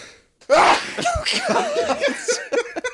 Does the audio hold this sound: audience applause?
no